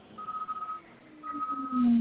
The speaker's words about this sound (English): you backing up the truck, man?